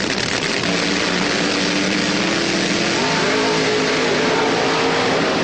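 A drag racing car's engine roars loudly and steadily, its pitch climbing as it revs partway through, with dense mechanical noise and no voices. It is Garlits' 1975 world championship car, brought back from his museum in Sefter, Florida, for the rain-delayed 1977 Gator Nationals.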